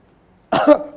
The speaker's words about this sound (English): You are coughing. The cough has been lingering for a while, but I've prayed about it.